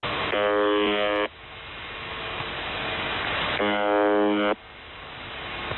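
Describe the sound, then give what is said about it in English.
Shortwave radio static from a live number station hisses steadily, interrupted twice by a loud, harsh buzzing tone lasting about a second each, roughly three seconds apart, with no voices present. “So it's just broadcasting static right now.”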